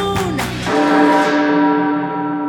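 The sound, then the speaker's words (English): A single loud, deep church bell strike rings out as the Toll the Dead spell is cast in a tabletop role-playing game, its layered tones humming and slowly fading over a couple of seconds, with no voices. “I've got necrosis ready to toll decay, chimes at noon.”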